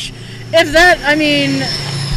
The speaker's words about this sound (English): That truck sounded like a plane. Yeah. It hit Mach 1 going back.